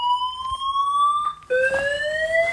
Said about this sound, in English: What is that? It's our fire alarm. Do we have to get out? Yeah. Is there a fire?